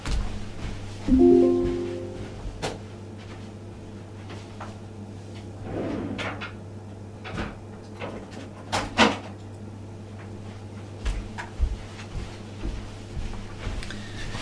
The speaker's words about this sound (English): my garage door just closed.